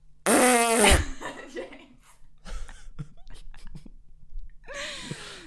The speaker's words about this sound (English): How loud is the fart? It's really loud.